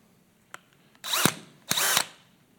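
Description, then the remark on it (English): A power drill in regular drill mode runs in two short bursts, each about two-thirds of a second, its motor whining as it grinds against hard concrete in a house about 32 years old. A couple of faint clicks come just before. “When I started out, I was using a regular drill mode.”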